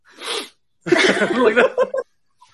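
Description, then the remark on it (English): A person imitates the sniff someone makes after taking a bite: a short, breathy nasal burst, a brief pause, then a longer voiced, snuffling vocal noise that trails off in a few choppy bits. “My favorite thing is the sniff.”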